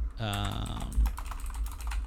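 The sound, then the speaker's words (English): Rapid clicking of computer keys typed in quick, uneven bursts, fairly loud, with a voice briefly speaking near the start, as someone looks up a video game's release date. “Sorry for the typing, friends.”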